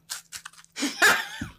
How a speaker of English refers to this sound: Start crunching.